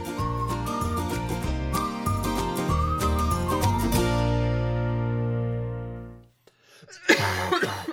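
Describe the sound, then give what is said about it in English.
A steady musical passage plays and fades out, followed by a brief pause and then a sharp cough bursting out loudly near the end. “I don't know why you felt the need to cough towards me.”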